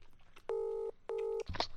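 phone call dialing tones

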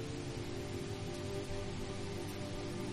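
rain falling

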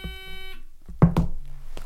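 quiz buzzer being pressed

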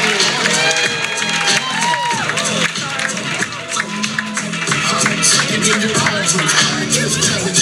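audience applause and cheering

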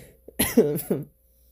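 coughing and throat clearing

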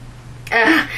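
coughing attack

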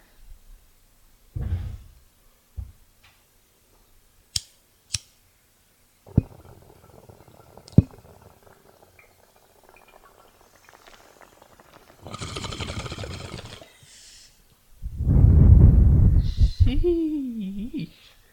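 bong rip

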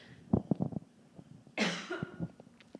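coughing

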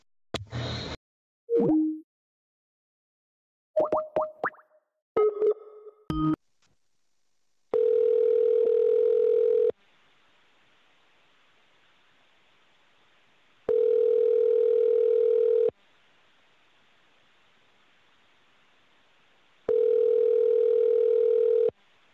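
telephone ringback tone

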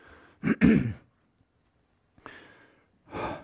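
cough and throat clearing

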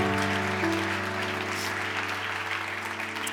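church audience applause

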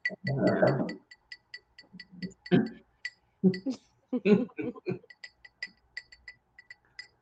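glasses clinking

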